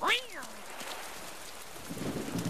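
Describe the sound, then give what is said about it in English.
Steady, hissing rain pours throughout during a lightning storm, with a low rumble of thunder swelling near the end and a brief sweeping tone at the very start. “Okay, lightning is scary and our pajamas are getting soaked.”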